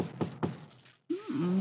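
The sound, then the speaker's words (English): Two firm, dull knocks on the door of farmers in Oak Harbor, Ohio, late at night, a quarter-second apart, followed by a short silence and then a low, drawn-out voice-like sound. “Somebody's at the door. This time of night?”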